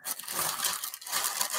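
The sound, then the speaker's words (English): Paper wrapping on a gift package gets torn and crumpled open in a steady, dense burst of crinkling and ripping, bright and hissy, with no voices over it. “go ahead and open your real gifts.”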